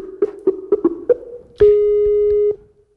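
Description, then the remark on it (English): A Skype echo test call connecting: a series of short rhythmic electronic blips followed by a sustained steady tone lasting about a second, clear, with no talking. “Let's do the Skype test. Echo test.”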